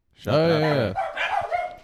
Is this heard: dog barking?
yes